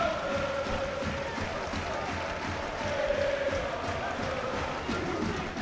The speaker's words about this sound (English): Now, as you're just sitting here, just listening to the crowd now, he's given the crowd something to try and help this team get themselves back up to it.